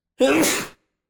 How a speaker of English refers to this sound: God bless you. Sneezing on the pod. Sneezing on the pod.